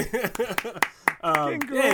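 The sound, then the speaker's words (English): Sharp hand claps, about seven or eight of them at a steady, fairly quick pace, ring out over voices that are laughing or cheering throughout, celebrating a host's news of a kid on the way. “I'm just clapping that he finally had sex.”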